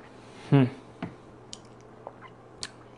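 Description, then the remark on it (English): A quick sip and gulp of rye whiskey with added water from a glass, followed by a few faint, sparse clicks and small wet mouth sounds, otherwise quiet. “Let me kill my glass.”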